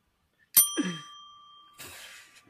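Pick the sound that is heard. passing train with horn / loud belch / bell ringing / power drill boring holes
bell ringing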